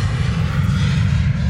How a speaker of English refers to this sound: Taking a few pictures of that, I'm sure. Once or twice. It's a pretty shiny blue airplane.